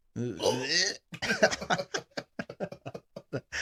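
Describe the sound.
A loud, strained gagging noise from a person on live camera, a throaty retch lasting about a second, followed immediately by quick, choppy vocal sounds and talking.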